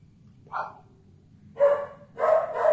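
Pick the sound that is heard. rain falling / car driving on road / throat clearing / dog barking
dog barking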